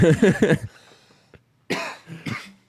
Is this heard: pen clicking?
no